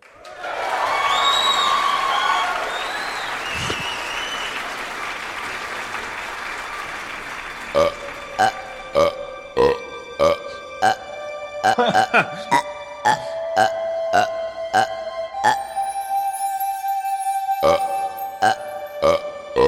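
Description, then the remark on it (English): A string of loud, drawn-out burps, one after another, followed by a rapid series of short, sharp bursts in a steady rhythm, all prominent. “Who was it that hates the burps?”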